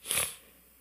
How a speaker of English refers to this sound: I'm sorry if I'm sniffing in your ear. I'm trying very hard not to. Allergies are driving me nuts here.